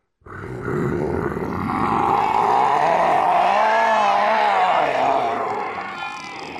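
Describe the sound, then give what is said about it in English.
A person imitates the roar of the Gravemind monster from Halo: one long, loud, gravelly growl that wavers in pitch, swells, and holds for several seconds before tapering off. No other voices or sounds. “you should come in with a post-edit roar.”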